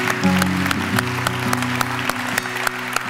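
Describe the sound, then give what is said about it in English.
An audience claps their hands in praise to God in steady, dense applause, many overlapping claps forming a loud wash of sound, with a sustained organ or keyboard chord held underneath. “Give God a hand clap of praise for all of that.”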